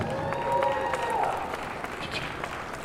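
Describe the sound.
An audience applauds with steady, dense clapping that holds for several seconds, with a murmur of voices and a brief raised cheer mixed into the crowd noise.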